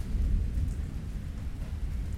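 Steady rain pours down with a deep, continuous low rumble of thunder underneath, a dense, loud wash of storm noise with no voices; a sudden, unexpected summer rainstorm hitting hikers descending a ridge in Russia in the morning.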